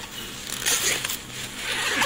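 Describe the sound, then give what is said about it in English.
A zipper on the side pocket of a backpack is pulled open in one continuous raspy run, fairly loud, with a brief pause partway through before the zipping resumes. The pocket has two zippers and is used to carry a rifle. “The nice part about the Pros is they have this side pocket. And this pocket has two zippers.”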